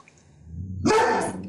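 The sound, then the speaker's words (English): Stokely, a schnauzer, lets out one sharp, loud bark, preceded by a brief low rising whine; no one speaks. “It's a dog. Yeah, that's Stokely, the schnauzer.”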